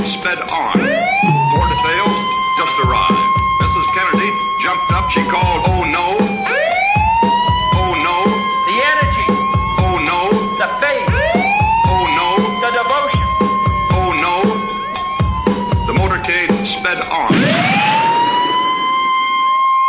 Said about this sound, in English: Here is the ambulance.